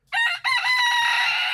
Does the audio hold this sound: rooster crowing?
yes